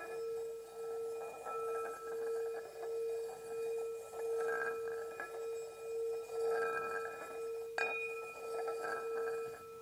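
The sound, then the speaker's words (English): A meditation bell, rung to close a sitting meditation, rings out alone in a long, sustained resonant tone that pulses gently as it fades, with a second soft strike near the end renewing the shimmering hum. “As long as you are present here, I'm going to ring the bell, and then you can come up from the meditation.”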